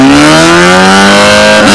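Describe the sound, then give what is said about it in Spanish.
A loud, rough engine of a beat-up car, belonging to Ruby's friend El Rata, accelerates hard in a drag race, its droning pitch climbing steadily over nearly two seconds, filling the sound with no voices. “Se viene otro rancón, viene el auto desartalado del amigo del Ruby.”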